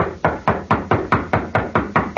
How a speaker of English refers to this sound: Nobody answers, Hoppy. You figure this is the right place? Yeah. Wade Benson's name is on the gate. Knock again.